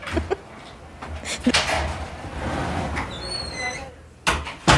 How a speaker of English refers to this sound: I feel like I have to shut my door. Sorry, 1 second. I'm shutting my front door. No worries. Front door.